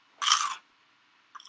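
A loud crunch of someone biting into dry ramen noodles, a brief burst followed by a pause, then a second smaller crunching bite at the end.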